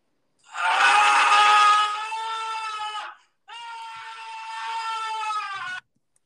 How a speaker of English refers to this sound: So is that someone just yelling? Yeah, that's someone just screaming. I'm sorry for the people who are listening, because that she's might hurt.